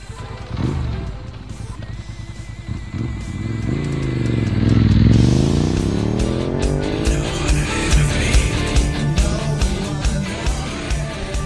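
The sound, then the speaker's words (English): A motorcycle engine revs loudly, its pitch climbing and dropping in a big sweep midway, then settling into a rough, rattling idle with sharp throttle blips. “Rev up your motorcycle and join us for Rough Ride, Burlington Humane's motorcycle charity ride.”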